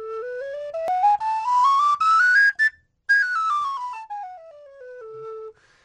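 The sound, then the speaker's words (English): A six-hole diatonic penny whistle in the key of A plays a clear stepwise major scale rising two octaves, pauses briefly, then descends note by note back down; bright, breathy tones with no talking. “It's a six-hole diatonic instrument. This one's in the key of A, and it plays two major scales.”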